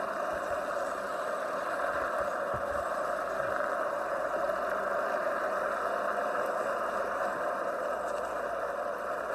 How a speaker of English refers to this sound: Ross Chastain being the pulser, as I'm seeing those cars get onto the track. They're following him, Ryan Sieg.